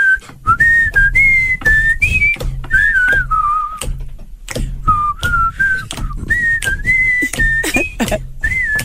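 A person whistles a song melody, the tune rising and falling in short phrases broken by breathy gaps and puffs of air, continuing steadily without any talking.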